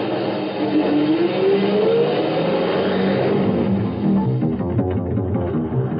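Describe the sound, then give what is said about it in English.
A semi truck's engine roars and accelerates as it drives fast, its pitch climbing steadily as it revs up, then holds a loud, rumbling drone for the rest of the stretch. “Hey, that's one of my trucks up ahead. Going awful fast.”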